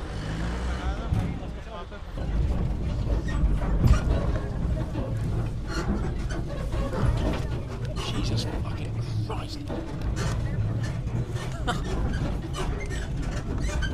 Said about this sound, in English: And now all these plonkers who have put their trucks in poor locations are now fighting for position.